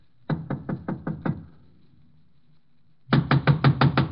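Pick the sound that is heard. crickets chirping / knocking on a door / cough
knocking on a door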